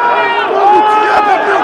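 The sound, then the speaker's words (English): A loud, dense mass of many voices shouting and chanting together at once, sustained without a break as a raucous protest crowd in Serbia roars at the parliament building, demanding Vučić's resignation and shouting "Serbia has risen." “The crowd demanded Vučić's resignation, shouting, "Serbia has risen."”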